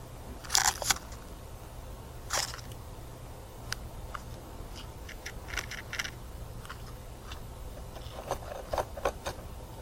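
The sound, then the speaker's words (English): Sharp, scratchy scraping bursts, like fingernails scratching across a voice recorder's microphone, heard on an audio recording made in a hotel, come in a loud cluster at the start, then scattered fainter scratches and clicks over a low steady hum. “on the audio recording, you can hear what sounds like fingernails scratching on the microphone of the recorder.”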